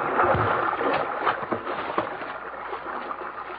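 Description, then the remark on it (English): A rowboat moves through river water, with steady sloshing and gurgling and a few soft splashes and knocks as the oars dip, with no voices. “Here, into the boat. Up front, quickly, before the thing of stopping us.”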